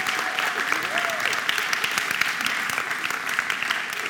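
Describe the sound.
A church audience applauds steadily for about four seconds for a departing member, a dense, even wash of many hands clapping at constant loudness, with a faint voice briefly audible underneath.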